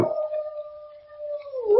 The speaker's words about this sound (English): Is that Toby again? He's been barking like that all night.